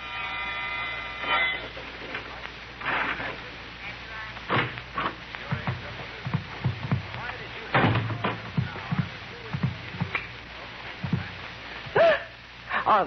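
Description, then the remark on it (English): A key rattles and scrapes in a door lock, with a series of sharp metallic clicks and clunks as it turns, over a faint steady hum. “The sound of a key in the lock of the door.”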